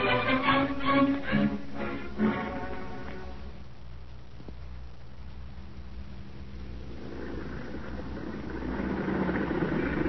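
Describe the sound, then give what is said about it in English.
A car engine idles with a steady low rumble that swells louder and rougher toward the end, as if revving slightly; a brief harmonic tone sounds at the start. “You in that car! Drive on, no stopping here!”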